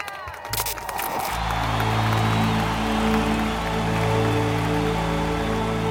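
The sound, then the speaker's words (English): About a second of dense, crackling clapping like applause on the Hungry Girl show at Hungryland, quickly replaced by a loud, steady, sustained musical chord that holds to the end. “And I'm loving the applause right now, guys.”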